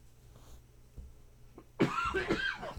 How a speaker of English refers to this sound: You know what? Rather than subject everybody to coughing, I'm just going to cut it short this time.